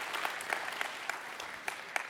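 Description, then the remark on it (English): An audience claps for the cast in a steady, moderately loud burst, many overlapping hand claps forming a dense patter, with a few sharper individual claps standing out at regular moments. “All right, let's give our cast a round of applause.”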